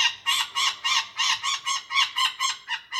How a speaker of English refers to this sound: go with bird sounds or even go deeper. Here's a finch.